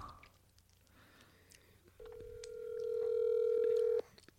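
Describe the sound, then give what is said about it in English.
A cell phone sounds a single steady electronic calling tone while placing an outgoing call, lasting about two seconds, swelling louder before cutting off abruptly, with only faint low background noise before and after. “It makes that sound when you're calling someone.”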